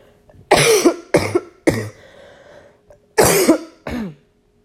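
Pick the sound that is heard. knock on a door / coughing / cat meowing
coughing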